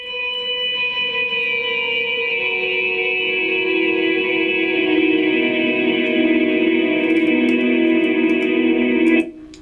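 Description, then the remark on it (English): A sustained musical drone holds steady chords of layered tones, clear and sharp, played without the L Capistan tape-simulation effect, at an even, fairly loud level for about nine seconds before cutting off abruptly. “Here's a drone without it.”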